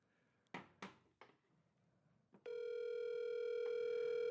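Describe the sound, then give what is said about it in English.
A few clunky handling knocks, then a steady telephone dial tone comes on as someone prepares to call their sister, holding as a continuous, fairly loud hum with no talking. “Nothing like the dial tone.”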